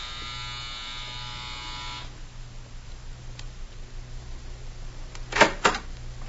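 A harsh electric doorbell buzzer, rung at the front door of a judge's house, drones steadily for about two seconds, then cuts off, leaving a low hum and, a few seconds later, a brief clattering burst.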